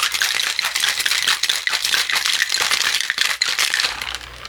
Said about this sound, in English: Put on the shaker top, and we will shake pretty aggressively for about 30 seconds.